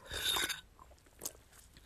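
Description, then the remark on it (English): A brief slurping sip of a drink, followed by a quiet pause and a couple of soft mouth clicks or a gulp. No one speaks. “Excuse me, let me take a sip.”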